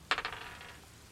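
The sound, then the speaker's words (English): A few quick, bright clattering impacts as dice tumble across a hard tabletop for a death saving throw, followed by a faint fading rattle as they settle; no voices are heard. “go ahead and give me a death saving throw.”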